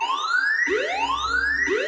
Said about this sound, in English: Oh dear. Oh dear, I think we may have just tripped the burglar alarm there.